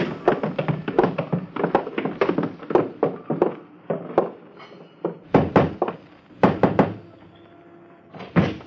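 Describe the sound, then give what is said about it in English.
Footsteps going down cellar steps: a run of heavy, uneven thuds and knocks, some clustered and quick, others spaced out, with brief pauses between bursts. “Hey, you're going down cellar steps, so hold on to the rail.”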